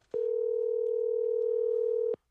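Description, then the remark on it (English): A steady, unbroken telephone dial tone hums for about two seconds, clear, opening and ending with a faint click, with no voices, as a call is placed to former White Sox manager Ozzie Guillen. “Let's get him on the phone right now.”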